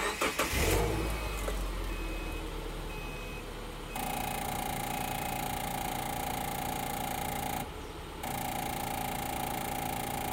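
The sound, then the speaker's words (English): A car engine cranks and turns over with a rough burst, then settles into a steady idle; a sustained whining tone joins the running engine partway through, briefly cutting out before returning. No talking. “All right, so just to give you a little idea of what I get to experience every time I start my car, listen to this.”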